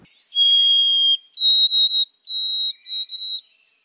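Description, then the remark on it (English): A white-throated sparrow sings its clear, wavering whistled song, which sounds a bit like 'Old Sam Peabody, Peabody': one long pure note, a step up to a higher note, then a few repeated high notes, clean with no voices. “Listen to the pretty, wavering whistle that sounds a bit like Old Sam Peabody, Peabody.”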